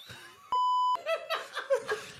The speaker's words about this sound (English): Wait. We didn't hear a word you said. He was beeping when you weren't talking.